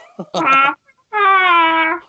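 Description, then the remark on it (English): A voice imitates a T-Rex honking like a goose with two loud, nasal honks, the first shorter and the second longer and drawn out, each strongly harmonic and slightly falling in pitch. “No, it's going to honk like a geese, like a goose.”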